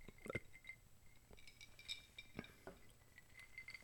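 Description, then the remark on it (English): Ice cubes clink against a glass in a few sharp, bright taps, scattered unevenly with small rattles between them, while someone takes a drink. No one speaks. “So, let me try to quiet the ice, but I'm going to take a drink.”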